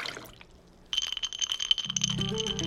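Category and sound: household object, ice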